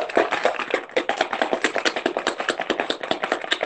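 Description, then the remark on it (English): A cocktail shaker holding ice, bourbon, a splash of grenadine and pineapple juice rattles in a fast, steady rhythm, each bright, clattering stroke following the last at an even pace for several seconds, with no voices. “Y'all know I always say shake till you see the frost on the shaker.”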